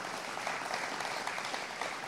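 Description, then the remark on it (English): A church audience claps hands together in a dense, steady wash of applause for over 60 people who gave their life to Christ, many overlapping claps with no breaks, holding at an even level throughout. “You can clap your hands right there.”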